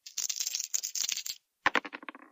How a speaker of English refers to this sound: Rolling the party dice.